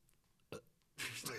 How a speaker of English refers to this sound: Do you need a burp?